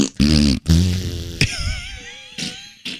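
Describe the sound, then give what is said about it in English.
A voice blows loud, buzzy raspberry fart noises with the lips, two long sputtering bursts followed by thinner, wavering squeaks and a couple of short puffs. “I love making the fart noise.”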